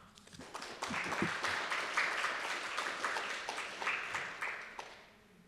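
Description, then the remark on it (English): Audience applause for the speakers at a talk: dense, steady clapping from a crowd that swells quickly, holds at a fairly loud level for several seconds, then tapers off toward the end, with no voices over it. “How about another round of applause for our innovative speakers?”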